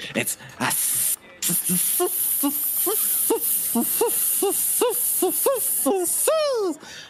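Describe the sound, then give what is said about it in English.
A person imitates a singing snake: a steady, steamy hiss runs throughout while a string of short, hummed notes climbs in pitch, ending in a higher swooping flourish. “It sounds like steam escaping.”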